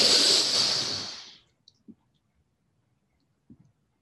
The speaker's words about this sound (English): Now again, let's breathe in, filling our lungs quickly.